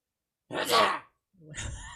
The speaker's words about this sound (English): Oh shit. the fuck was that? It's a sneeze. Bless you.